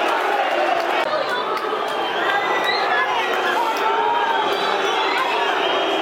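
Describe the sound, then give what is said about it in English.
A football crowd at a Millwall versus West Brom match whistles while the goalkeeper takes his time, over a steady, loud roar of stadium noise, with thin high-pitched whistles rising and falling through the dense crowd din for several seconds. “Goalkeeper taking his time. That's the whistles you can hear.”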